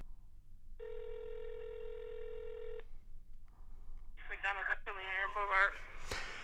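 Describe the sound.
A steady electronic telephone tone hums for about two seconds, followed by a few faint beeps as a number is dialed for a phone call to McDonald's. A voice briefly answers, then a sharp click.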